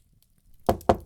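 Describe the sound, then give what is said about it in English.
Two firm, fairly loud knocks on a wooden door by someone delivering a letter, spaced about a fifth of a second apart after a quiet moment, with no one speaking. “Someone knocking on my door at this hour?”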